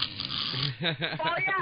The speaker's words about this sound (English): I was going to say, though, you know, at the end of the conversation, you heard me snoring. I didn't know I snored either.